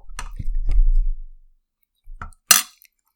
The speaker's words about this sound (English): Yeah, I'm just gonna eat this bread. I wonder if you can hear it,